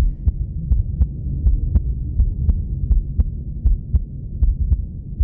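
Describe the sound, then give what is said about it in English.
A steady, rapid heartbeat pulses through a doctor's ultrasound monitor, each thump regular, wrapped in a low whooshing, swishing hum that fills the background throughout. “And my doctor tells me it's mine, it's my heartbeat.”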